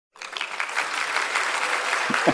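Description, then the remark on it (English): A played sound effect of crowd applause and cheering starts abruptly and holds steady, a dense wash of clapping hands with a few voices rising near the end. “Yeah, we had to get the cheer ups.”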